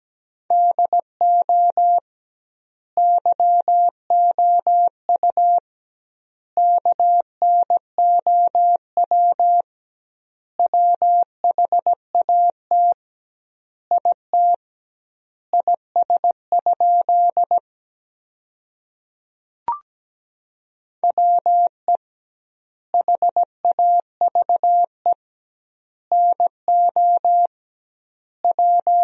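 Morse code sent at 17 words per minute, spelling sentences built from the top 100 words with double word spacing: a steady single-pitched beeping tone keyed into short dots and longer dashes, grouped into words with extra-long pauses between them. No voices.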